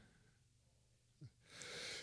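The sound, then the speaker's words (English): A big sneeze: a short, sharp intake of breath followed by a loud, hissing, explosive burst of air that lingers for about half a second. “that was a big sneeze.”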